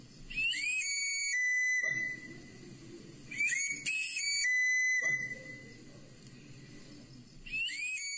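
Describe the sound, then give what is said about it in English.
A knife sharpener's pan-pipe whistle, announcing his arrival in a neighborhood where he sharpens knives with a bicycle wheel, plays quick rising and falling runs of bright notes, repeated three times, with a low rumbling hum filling the gaps between phrases. “And they have a particular whistle. And when you hear the whistle, you know the knife sharpener's here.”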